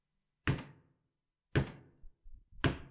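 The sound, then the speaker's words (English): Three loud, heavy knocks on a door, evenly spaced about a second apart, each a booming thud with a short resonant decay, with no voices. “I won't open the door.”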